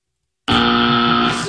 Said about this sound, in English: And oh, sorry, that was supposed to be a buzzer.